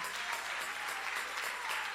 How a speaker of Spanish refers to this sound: Y el que lo crea, le dé un fuerte aplauso al Señor con el corazón.